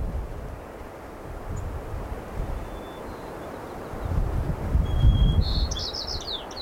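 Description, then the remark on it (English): Wind rushes through grasses and willows in a steady, airy hiss that swells into a stronger gust midway, while a few high bird chirps flicker in near the end. “But when I am cradling my too tired mind, I hear the sound of wind.”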